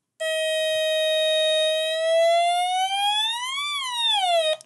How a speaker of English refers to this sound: What is it again? It's an oscillator. It's a Morse code key, but it's basically an oscillator.